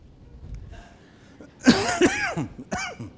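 A person with a dry cough picked up on a plane flight coughs a few times in quick succession in dry, harsh bursts, preceded by a soft intake of breath and faint background murmur.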